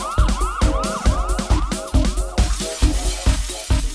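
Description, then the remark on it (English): Rising and falling siren wails repeat over a pounding, steady four-on-the-floor kick drum in a hard house track, loud, with the siren sweeps cycling quickly in time with the dance beat. “Can you hear the sirens? They're getting closer.”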